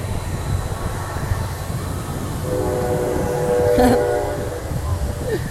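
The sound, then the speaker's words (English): A train rolls past with a steady low rumble, its horn blowing a sustained chord partway through as the noise swells to a peak and then begins easing off. “Oh, here comes a train.”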